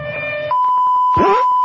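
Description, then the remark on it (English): A siren-like electronic sound starts up: a steady, piercing high tone joined by a loud swooping pitch sweep partway through. No one speaks. “Oh, shit, by the sound of the siren, we're out of time.”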